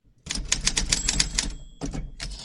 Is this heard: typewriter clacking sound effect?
yes